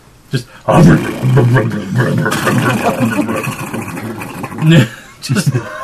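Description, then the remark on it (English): An old boat engine with an underwater exhaust, a rough, gurgling low rumble that sputters and surges unevenly for several seconds, with a brief pause near the end and voices mixed in. “It sounds like a old, like, swamp person's skiff. Or like an old, like, Amazon jungle explorer's boat.”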